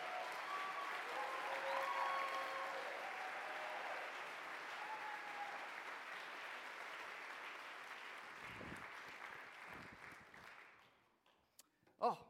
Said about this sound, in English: Thanks, let's give them all a round of applause. Thanks, guys.